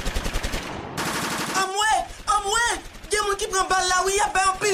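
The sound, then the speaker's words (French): A rapid burst of automatic gunfire, with shooting on all sides, dense repeated cracks for over a second, stops abruptly, and then a voice starts talking loudly. “Y a tiré tout côté.”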